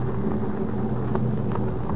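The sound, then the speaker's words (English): A steady stormy roar of rain in a storm with fog, with a low, continuous rumble, loud and unbroken for the whole stretch, with a couple of faint brief swells partway through. No one speaks. “Thank heavens for the storm and the fog.”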